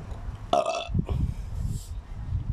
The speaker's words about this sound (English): I'm going to burp again. I'm sorry.